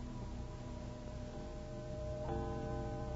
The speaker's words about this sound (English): Hey, Mr. Ben, hear that? That was 12 o'clock midnight. Happy New Year, Mr. Ben.